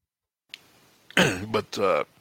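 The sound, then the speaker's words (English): A voiced cough in two quick bursts, each rough and throaty like clearing the throat, rising out of near silence and fading to quiet breathing at the end. “This is back in, like I said, the third week of April, so most of us probably forgot as I paused to cough.”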